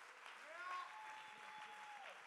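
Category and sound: crowd, audience clapping hands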